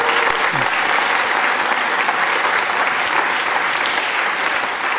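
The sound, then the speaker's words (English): A crowd at an awards event applauds steadily to congratulate student award winners, a dense wash of many hands clapping at an even, loud level throughout, with no pauses or voices breaking through. “So we congratulate them on that extraordinary success. So another round of applause.”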